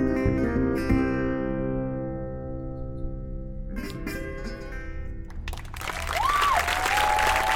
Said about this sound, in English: Won over by Rusty's emotional delivery and perfect pitch, everyone present gave Nail a thunderous round of applause.